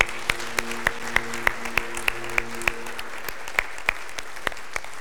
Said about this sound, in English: that deserve a hand clap of praise to the Lord.